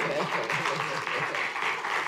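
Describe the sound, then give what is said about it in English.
A crowd applauds steadily for God and the angels, dense overlapping claps forming a continuous wash of sound at fairly even loudness throughout, with faint voices mixed beneath. “I think you should clap for God for angels.”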